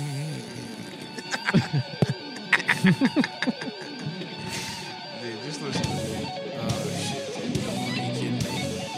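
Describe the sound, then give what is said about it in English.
Loud shredding metal guitar music plays on its own: rapid distorted runs with bending, squealing notes, backed by steady dense accompaniment and punchy hits. “Now this is music. This is just like the Power Rangers theme.”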